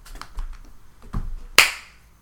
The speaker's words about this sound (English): I'll clap us out.